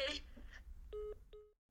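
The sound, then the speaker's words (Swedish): Short electronic dialing tones sound in quick succession, a few distinct beeps of a phone being dialed to call someone, clear, preceded by a brief bit of rustling. “Jag måste ringa honom nu.”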